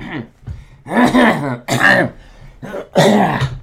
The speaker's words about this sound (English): Cough I've had since 3 years old. Make your kids clean underneath their bed, guys. That's the way to make sure your kid has a lifelong cough.